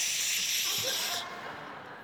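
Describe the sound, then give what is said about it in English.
A steady, loud aerosol hiss of body spray: one continuous bright, airy burst lasting about a second, then a softer, duller hiss tapering off. No one speaks. “the worst thing that could have ever been created, body spray”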